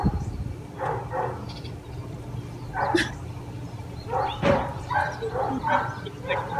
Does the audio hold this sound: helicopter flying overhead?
no